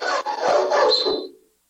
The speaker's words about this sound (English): So one of the dogs wants to come back inside, and that's their like scrape down the glass door. Yeah, Kylo started doing that, and he's figured out how to open the screen and nudge the door if we don't lock it to get in.